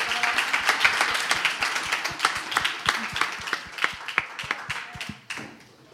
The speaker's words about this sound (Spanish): Así que le agradecemos con un aplauso.